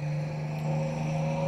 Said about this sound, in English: Oh, we're on a bus. Okay. All right. Sounds good. It does kind of sound like you're on a bus.